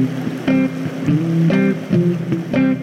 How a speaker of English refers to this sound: The foam on the surface eddying out there and making a circle around, and the fast water coming in the top and exiting at the bottom. Beautiful.